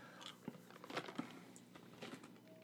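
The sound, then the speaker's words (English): Wet chewing of candy with irregular crunchy bites and small clicks, continuing steadily for a few seconds with no talking over it. “You guys should be talking while I'm chewing.”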